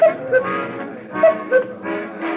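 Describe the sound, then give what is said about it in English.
A cuckoo clock over a bar calls twice, each call a clear two-note hoot repeated about a second apart, fairly loud over a busy, muffled background of room noise. “I didn't need the silly cuckoo clock over the bar to tell me the passing of the minutes.”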